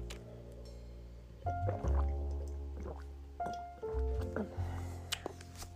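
Liquid sounds as a tablet is mixed into a glass of water: sloshing, dripping and a few soft clinks in uneven bursts, with a low hum underneath and no talking.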